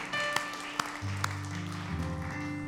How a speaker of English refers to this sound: Come on, let's give the Lord a hand clap of praise today.